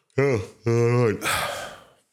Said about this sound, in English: I wasn't yawning there. Well, no, I got to keep that in. I was just going to edit around it. But no, we got to keep the yawn.